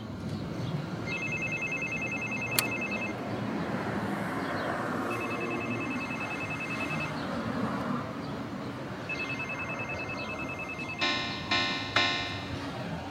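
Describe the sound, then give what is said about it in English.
An intercom buzzer, pushed to be buzzed into a building, rings three times in evenly spaced, two-second electronic trills, high-pitched over steady background noise, followed by a short harsher buzzing burst at the end. No one speaks. “So I think I'm about to hit the buzzer and be buzzed into the building.”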